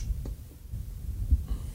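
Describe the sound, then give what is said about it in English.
A short, low rumbling fart with a couple of dull, throbbing bursts lasting under two seconds, heard on its own without any talking. “There's my fart for the day.”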